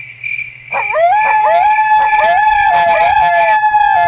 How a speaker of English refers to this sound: That's four coyotes. See what I'm saying?